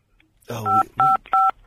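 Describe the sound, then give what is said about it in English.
Three quick telephone keypad tones from a radio call-in caller pressing the buttons instead of hanging up, each a short steady dual-pitched beep at an even pace, sounding over a muffled, voice-like background murmur. “You pressed the buttons instead of hanging up, you muppet.”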